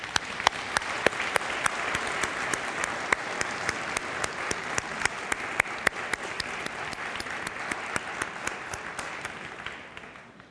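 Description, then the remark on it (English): A church audience applauds steadily for about ten seconds for the people involved in a church event. It is a dense wash of many hands clapping with scattered sharper claps, fading out at the end. No one speaks. “Maybe we can give them a round of applause.”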